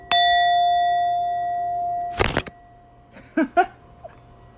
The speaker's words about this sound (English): So my phone just slid onto my laptop.